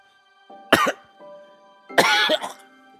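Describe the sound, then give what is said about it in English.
A voice mimics a cat hacking up a hairball: two loud, rasping, throaty coughing bursts with gagging retches, separated by a brief pause, no talking. “He coughs up a hairball.”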